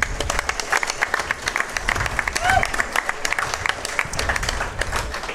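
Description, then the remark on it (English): A live audience bursts into steady, dense applause for brands like Mossy Oak and organizations like Turkeys for Tomorrow, lasting several seconds at a fairly even loudness, with a few cheers and voices rising out of the clapping. “I think we need to give a round of applause to brands like Mossy Oak and organizations like Turkeys for Tomorrow.”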